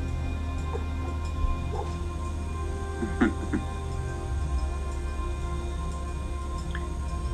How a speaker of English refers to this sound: And then the dog barks.